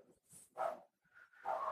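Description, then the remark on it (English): A dog barks several times, a few short, rough barks with a brief higher yelp between them, fairly quiet and with no one talking. “That dog. The dog is back.”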